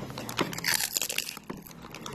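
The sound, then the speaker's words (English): Crunching as someone bites into and chews a crisp snack, a dense run of crackly, brittle bursts lasting a couple of seconds with no talking over it. “I want everyone who will listen to this to listen to the crunch.”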